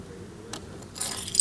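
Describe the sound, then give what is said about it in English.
A set of house keys jangles, a brief metallic clink followed by a brighter, busier rattle of jingling keys that builds toward the end, with no voices. “Here's my keys. Here's the key to my house.”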